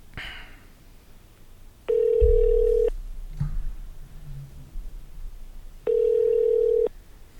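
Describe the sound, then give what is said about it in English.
A telephone ringback tone heard down the line while a call is transferred to extension 500: two steady, buzzy one-second rings separated by a few seconds of quiet line hiss and faint low rumble, with no one speaking. “Oh my god, answer the phone.”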